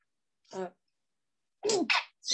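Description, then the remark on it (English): A short voiced intake, then after a brief pause a sharp, loud sneeze erupts in two quick bursts, with another starting just as it ends. “Sorry, I got sneezed, child.”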